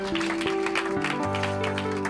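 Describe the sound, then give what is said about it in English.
An audience applauds during a church worship service, giving a round of applause to the Holy Spirit: a dense, steady patter of many hands clapping that continues for about two seconds over sustained, held keyboard chords that shift to a lower note partway through. “You give a round of applause to the Holy Spirit.”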